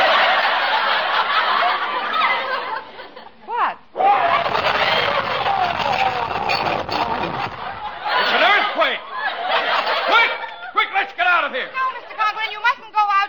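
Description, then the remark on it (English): Loud trumpeting from an elephant tied to a house, in long blaring bursts with rising and falling wails, continuing almost nonstop and growing into a flurry of shorter squeals near the end, amid a noisy clamor. “An elephant is tied to our house!”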